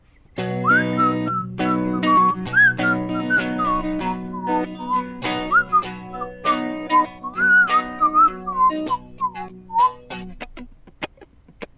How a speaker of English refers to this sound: Goes in the solo, which I don't know, then a whistling bit.